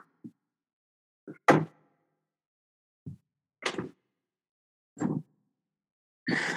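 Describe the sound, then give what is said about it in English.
A door being handled and shut after a cat that had come in was shooed out: a series of separate thuds and sharp knocks spaced a second or more apart, fairly loud, ending in a short scraping rattle, with no talking. “My one of my wily cats, I thought I had fully closed the door, but she came in, and I'm pretty sure listeners are going to be able to hear a couple meows.”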